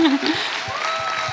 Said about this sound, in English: who deserves his own hand of applause.